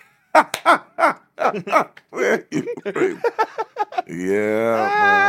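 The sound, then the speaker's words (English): A run of short, rough throat-clearing bursts in quick succession, from something stuck in the throat, ending in a longer voiced, strained groan whose pitch wavers before cutting off. “Jesus, let me clear my throat.”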